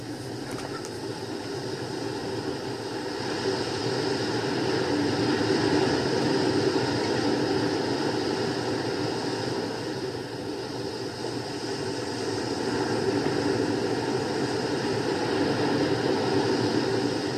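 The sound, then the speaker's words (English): A steady, unbroken wash of Ocean City ambience, played through an app on an Amazon Echo, with a low rumbling roar and faint sustained hum tones that swell gently and settle again; no one speaks. “Yes, you can hear the sounds of Ocean City right on your desktop.”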